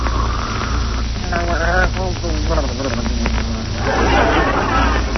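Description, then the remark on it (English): A man snores in loud, rasping drawn-out breaths, with a wavering, throaty pitch and a wheezy exhale at the end, over a steady background hiss. It sounds like a voice imitating the snoring. “Oh, listen to those beautiful pear-shaped snores.”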